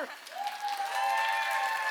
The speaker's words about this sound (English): I'm used to you all applauding as she leaves, but today I'm going to receive that as an applause for myself.